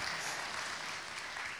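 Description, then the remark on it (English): One woman claps steadily throughout, a dense, continuous patter of hands with no talking over it, holding an even loudness from start to finish. “I got one woman clapping for you.”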